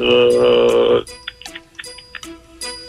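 A loud, droning buzz-like tone for about a second, then a game timer's ticking: sharp clicks at a slightly uneven pace, with no voices. The timer counts down a player's turn in a word category game.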